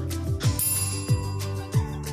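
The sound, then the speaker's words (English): A bright, ringing notification ding sounds early on and lingers, layered over a steady music beat with thumping kick drums; no one speaks. “If you haven't already, make sure you like, subscribe, and hit the notification bell.”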